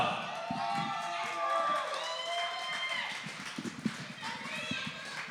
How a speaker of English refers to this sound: Please give a huge round of applause to Aisha